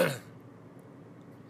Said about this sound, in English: Clear my throat.